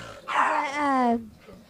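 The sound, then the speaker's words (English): A dog lets out one drawn-out, loud bark that slides downward in pitch, followed by quiet; no one speaks. “That dog's terrible.”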